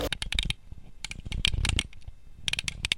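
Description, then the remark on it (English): Paper crackles and rustles in quick, uneven bursts with brief pauses between, as it is picked up from under a bed and handled. No one speaks. “Well, he just dropped the paper under the bed. I'll get it.”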